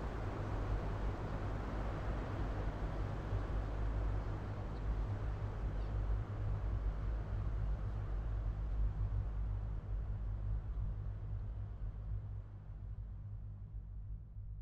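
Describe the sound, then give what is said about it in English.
A boat engine, run by the skipper for the return to shore, drones steadily with a deep, even hum beneath loud, continuous rushing wind. The roar stays constant throughout, and the hiss thins slightly toward the end. No one speaks. “All that could be heard was the wind and our skipper powering the engine for our return to shore.”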